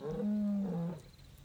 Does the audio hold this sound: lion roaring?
yes